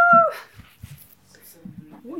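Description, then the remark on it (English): An American Bully puppy named Hurricane lets out a short, high, falling whimper right at the start, fairly loud, followed by a few softer snuffly sounds and faint voices murmuring. “What kind of pup is it again? American Bully.”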